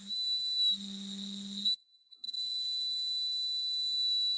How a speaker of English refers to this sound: So my mom sent me this. A bird whistle. It like whistles and hums at the same time.